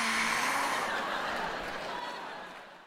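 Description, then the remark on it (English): A person imitates bacon sizzling in a pan, a dense, crackling hiss that holds steady for a few seconds before gradually fading, with faint chuckling underneath. “Even the frying of bacon sounds like applause.”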